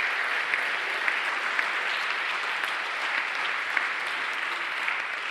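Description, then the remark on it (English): Sustained applause from a large audience for people who raised their hands, a dense, steady wash of clapping that holds at an even level throughout with no talking over it. “Should we just give those people a round of applause?”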